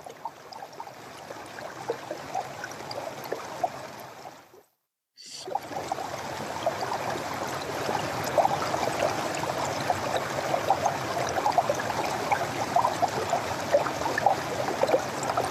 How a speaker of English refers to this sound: Let's connect to the river and her wisdom.